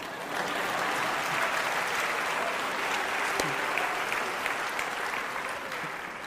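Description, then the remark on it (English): An audience claps together in a dense, steady burst of applause that starts almost at once and holds at an even, fairly loud level for several seconds. “I know why some of you are not clapping, though.”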